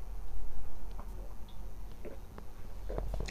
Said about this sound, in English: Hold on, guys, one second. I'm gonna drink something here. Have a little water through my Lark bottle.